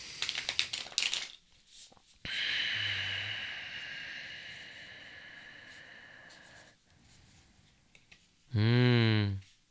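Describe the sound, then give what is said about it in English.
A deck of tarot cards is shuffled, starting with quick papery clicks and then a long, steady riffling rush. A short, low droning tone cuts in near the end. “You hear the deck being shuffled as we speak.”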